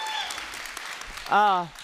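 A crowd at Vintage Church claps and cheers to welcome Aurora Christian School: a steady, dense, crackling patter, then one loud, high whooping cheer rises over the applause before fading out at the end.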